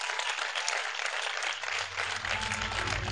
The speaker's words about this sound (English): I think I should close now, right? Wow. I think we should clap one more time.